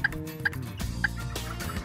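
A turkey call, worked by a hunter during a turkey hunt to bring the birds back in, gives three short, sharp yelps at uneven intervals, clear over a steady outdoor background rumble, with no talking.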